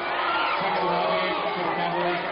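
A dense, steady roar of crowd voices with overlapping shouting and chatter fills the whole stretch, loud and continuous with no pauses, the tone agitated rather than cheering: the Owosso crowd at a basketball game, unhappy after a foul was called against Owosso.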